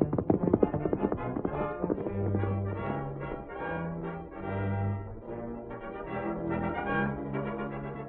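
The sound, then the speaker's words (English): Horse hooves clip-clop in a quick, steady rhythm, sharpest at the start, then continue under a swelling, sustained musical backing, as a rider urges his horse on toward Carl Faber's place. There is no talking. “Fella, you're carrying me to Carl Faber's place as fast as them spavin legs of yours will get us there.”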